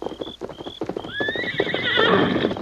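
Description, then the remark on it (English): A horse named Silver gives a loud, rising whinny that trembles and fades as it is called and mounted, while hooves clop in a quick, uneven rhythm underneath. A couple of short high tones sound at the start. “Steady, Silver. Oh, Scott. In the saddle, Tonto.”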